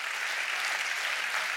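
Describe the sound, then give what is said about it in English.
An audience claps their hands together at the preacher's call during a sermon, in a steady, dense wash of applause. Many overlapping claps blend into a continuous, bright roar at an even loudness, with no voices. “Come on, clap your hands and say, "I want God to have my attention."”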